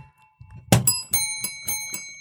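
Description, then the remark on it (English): A bright metallic bell rings with a sharp strike followed by several quicker repeated rings, each leaving a shimmering tone; fairly loud, with no talking. “take these goddamn bells out of here.”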